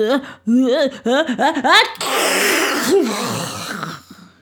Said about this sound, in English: He sneezed so hard he blew the curtains back, and then he could see the witch just a little bit better, and he was sorry for that.